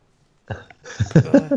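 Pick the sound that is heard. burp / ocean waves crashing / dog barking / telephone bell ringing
burp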